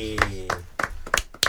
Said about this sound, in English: Clap it up for episode 16.